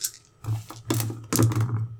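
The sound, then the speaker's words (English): Several six-sided dice, rolled for a short-sword sneak attack in a tabletop role-playing game, clatter and rattle across a hard surface in a few quick bursts of clicks, moderately loud, over a low steady hum. “Oh, it feels good to be rolling this many dice again.”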